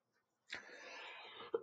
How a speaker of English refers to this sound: Now, and I do apologize for the cough, but I'm really, really trying to control it, and I'm not going to let it interrupt all the material I'm trying to lecture on. So bear with me as I get through this cold.